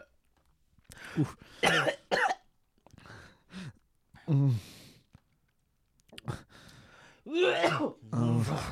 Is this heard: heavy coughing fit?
yes